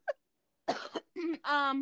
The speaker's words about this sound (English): Of course, yeah, I do have a little cough. I just got done smoking, y'all. Don't worry.